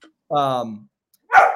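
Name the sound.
dog barking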